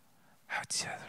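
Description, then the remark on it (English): A voice imitates the whisper of a one-year-old hiding in a corner in plain sight: two quick, breathy, hissing bursts with no clear pitch, the second sharper and more sibilant, ending in a softer airy trail. “That would be a one-year-old whispering in the corner in plain sight.”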